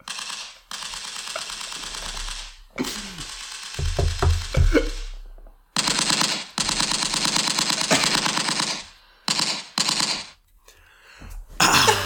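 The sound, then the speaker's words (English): Loud bursts of rapid, rattling gunfire come in several volleys separated by brief silences, a harsh crackling sound effect with no voices. “Well, hopefully some of those bullets would have gone through the phone”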